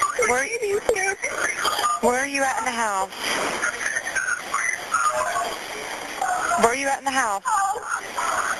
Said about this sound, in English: He's yelling to turn off the alarm.